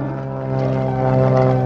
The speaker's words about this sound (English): On that long-ago summer day, a man named Lee Newland is driving in his truck when he notices a small plane flying above him, about 20 miles